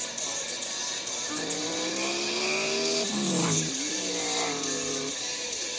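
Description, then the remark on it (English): Engines drone steadily with rising and falling harmonic whines, one pitch sweeping sharply down and back up midway, as race cars accelerate and brake during a race on a road course, amid broad noise. “So we're gonna get this race back underway.”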